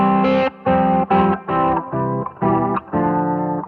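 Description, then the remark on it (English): Electric guitar played through a Fairfield Shallow Water modulation pedal into the dry amp: a run of about seven loud, steady strummed chords with short gaps, the tone warbling and slightly wavering in pitch, with no talking. “This is the Fairfield Shallow Water.”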